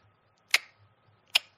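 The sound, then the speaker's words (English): Two crisp, evenly spaced ticks from an old mechanical clock, clear against a quiet background with a faint low hum. “Oh, that one? One's a tick.”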